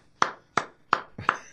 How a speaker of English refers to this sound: Or was that a golf clap? That sounds bad. From where I'm sitting, that doesn't sound like a good thing.